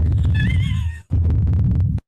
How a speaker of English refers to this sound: That was heartbeat. Fantastic.